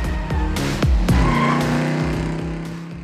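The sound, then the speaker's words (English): Drop-top convertible car engines rev loudly and repeatedly up and down Ocean Drive in South Beach, Miami, their pitch surging up and dropping back, with a brief tire squeal mixed in and a steady rumble throughout; no one speaks. “That iconic shoreline of newly built skyscrapers reaching into the sky, with drop-top convertibles revving up and down Ocean Drive.”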